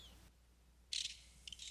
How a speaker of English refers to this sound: Just listen to those lovebirds.